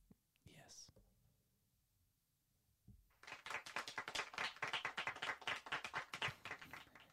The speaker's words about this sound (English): I hate that. I love it. It's such a condescending clap. I know. That's what you should name it, the condescending clap. I named it, I just named it the small applause.